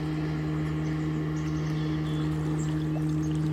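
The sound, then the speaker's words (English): A motor engine revs up and drones steadily near water with water plants in the morning, its low hum constant and unbroken, with faint trickling water in the background and no voices. “Powerful aromas of water plants, another engine revving up.”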